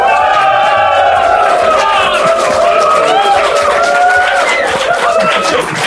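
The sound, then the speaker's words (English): A large live audience at a .NET Rocks show in Sofia, Bulgaria, cheers and shouts in a loud, steady roar for about six seconds, many overlapping voices rising and falling together over a hiss of applause-like noise. “This is the biggest crowd I've ever seen.”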